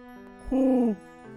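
A single soft, hollow hoot from a white and black spotted (pied) barn owl, held for about half a second and dipping slightly in pitch at the end, over a faint steady background hum.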